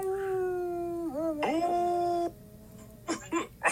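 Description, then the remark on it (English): A person imitates a wolf's howl: one long, loud, sustained wavering note that dips and swoops upward before cutting off, followed by a few short breathy sounds. “And she was howling at the moon like a wolf.”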